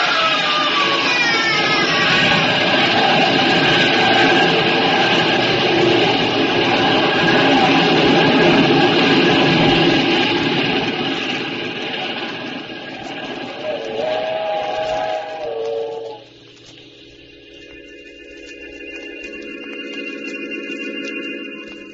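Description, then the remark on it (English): A loud train roars past, its whistle sounding in sustained, wavering tones over the rumble; the noise then drops away, leaving a steadier, fainter whistle-like drone. “When the train had passed, I saw what was left of his body on the tracks.”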